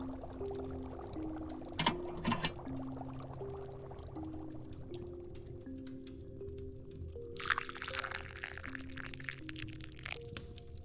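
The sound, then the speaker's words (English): A golden potion is poured into a cup in a steady trickle with a couple of brief louder splashes, while soft sustained tones hum quietly underneath. No one speaks. “The potion should now seem to be a golden color, similar to raw honey. Let's pour a cup.”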